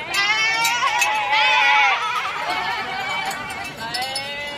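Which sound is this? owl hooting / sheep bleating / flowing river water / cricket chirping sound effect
sheep bleating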